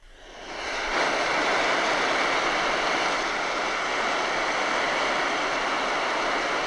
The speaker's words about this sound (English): It's an app called Rain Rain. It's a blend of Car in the Rain, Rain on a Tent, Blizzard Wind, and I guess that's all it.